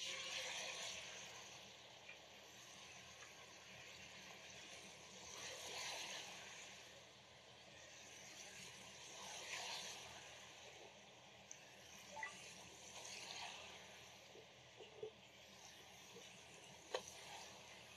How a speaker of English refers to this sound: Just gonna pour in the chicken.